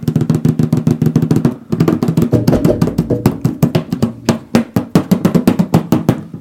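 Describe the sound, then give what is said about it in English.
Rapid hand drumming on a coffee can, loud and steady, with hollow, resonant metallic thumps in a busy rhythm. A brief pause comes early, then the drumming continues with sharper, spaced accents. No voices. “Oh, that was really a coffee can.”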